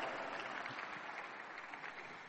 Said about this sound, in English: Oh, if you are clapping, you can clap. There's no ban on clapping.